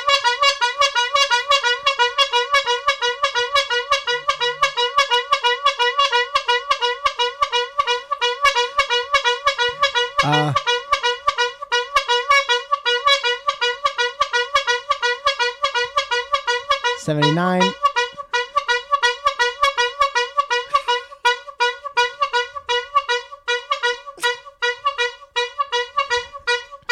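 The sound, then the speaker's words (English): A loud, bright car horn blares in rapid, steady bursts for the whole stretch, an 80-honk run marking five years of friendship, with a couple of brief swooping sounds cutting in along the way. “That's an 80 horn honk for 5 years of friendship.”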